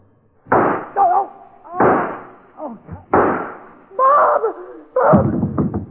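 Four sharp, loud gunshots crack out at uneven intervals in a warehouse, fired from the door, with startled shouts and cries from people mixed in between and under the blasts.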